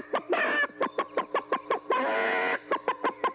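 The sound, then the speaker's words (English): A person imitates a chicken with a rapid string of short, rhythmic clucks, broken by two longer squawking bursts, loud with no other talk over it. “I will not be able to have a civil conversation here if you keep clucking.”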